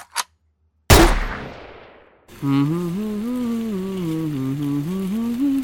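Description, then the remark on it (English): A handgun fires a single loud shot after a small click, its echo trailing off for about a second before a wavering sustained tone takes over. “Pulling out a handgun and firing.”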